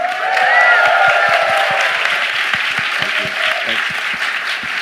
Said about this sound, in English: you don't get a round of applause as often, but let's give it, come on.